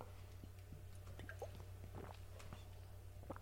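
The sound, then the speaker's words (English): Someone drinks local bottled water from Sherman Oaks out of a glass bottle, with soft glugging and small bubbly clicks scattered over a few seconds above a low, steady background hum. “That one gave a beautiful sound as I drank it, by the way.”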